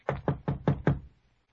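Five firm knocks on the wooden door of a dilapidated farmhouse in quick, even succession, clear, followed by a brief fading resonance and silence.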